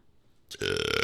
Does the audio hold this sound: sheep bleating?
no